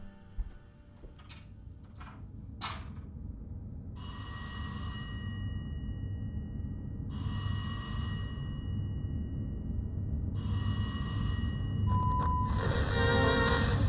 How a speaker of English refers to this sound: I'd turn off the TV, maybe get a book and read, doze a little bit, and then the phone rings.